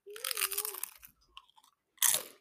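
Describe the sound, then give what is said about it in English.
Loud crunching of crisp pumpkin tortilla chips, made with pumpkin puree, pumpkin seeds, cinnamon and nutmeg, being bitten and chewed: a long crackly burst, a pause, then a second sharp crunch, with no talking. “I know that's crunchy.”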